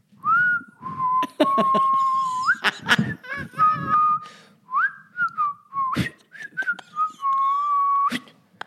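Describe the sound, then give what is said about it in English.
Slow, drawn-out, seething human whistling, long sustained notes with lazy upward slides between them, broken by a few sharp knocks and clicks. “It's like saying in his whistle, I'm totally fine with this.”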